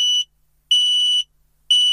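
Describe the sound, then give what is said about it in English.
A carbon monoxide alarm in a home beeps loudly, signalling a carbon monoxide leak, in long, shrill electronic tones, about half a second each, separated by short silences in a steady repeating pattern, with no one speaking. “You can buy a good alarm from any DIY store. And if carbon monoxide is leaking in your home, this is what it sounds like.”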